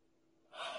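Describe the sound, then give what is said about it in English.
A sudden breathy inhale from a yawn, fairly loud, rising out of near silence and ending abruptly. No talking. “Wow, I'm like yawning like crazy, but it's, trust me, it's not because it's uninteresting.”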